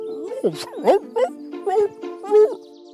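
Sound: dog barking persistently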